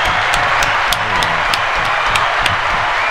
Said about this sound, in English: Appreciate the applause button one more time.